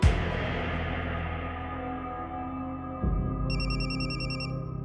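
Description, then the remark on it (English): A telephone rings in rapid electronic trills near the end, layered over a low, sustained droning tone that shifts partway through; no one speaks. “Pablo Escobar knew the phone call had gone on too long.”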